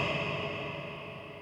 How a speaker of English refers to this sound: It belongs to us. I'm going to say it again in a reverb. It belongs to us.